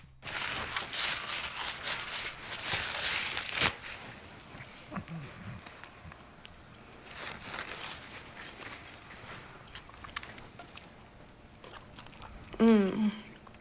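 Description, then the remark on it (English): Loud, crunchy chewing fills the opening seconds, then continues as softer, irregular crunches and bites, with a brief voiced, pitch-gliding sound near the end. “I love when people eat food and they do this.”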